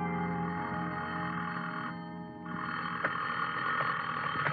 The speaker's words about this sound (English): The only reason I woke up then was because somebody was ringing a telephone in my ear.